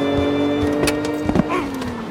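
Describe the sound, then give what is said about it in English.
A car engine hums steadily with a few short knocks and bursts of noise, its pitch dropping slightly toward the end as it pulls away. No one speaks. “That meal just stole my car.”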